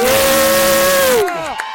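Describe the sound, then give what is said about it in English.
A crowd of fans cheers and yells together in a loud, dense roar at the College Club in downtown Madison during UW-Madison homecoming weekend, one voice holding a high sustained shout above it before the noise drops off and the pitch slides down. “That was the ultimate, like, you just say anything loud and yell and people follow. They'll respond.”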